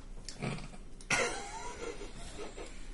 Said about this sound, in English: Sorry, cough.